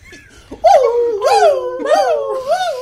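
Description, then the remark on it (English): A voice imitates a howling dog alarm: three loud, wavering howls that swoop up and fall back down in a steady repeating pattern, with no talking. “What does the alarm sound like when it goes off?”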